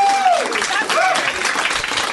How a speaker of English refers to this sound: I'm able to accept your applause.